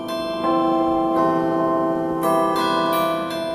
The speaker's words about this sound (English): The way these chimes work, you can see that there's some metal rods specially tuned to sound as if they're a cast bell, and they really sound spectacular.